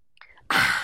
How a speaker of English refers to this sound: I have a glass of water in my hand. I'm having a sip.